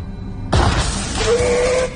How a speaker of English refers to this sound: I don't know, some kind of electrical surge.